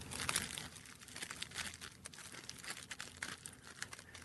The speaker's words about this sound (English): So he's gingerly pushing all the weed into the paper, making it one level across it. Oh no, he's rolling a cone, which means that he's twisting out the amount of cannabis towards one side of the paper. The other side's larger.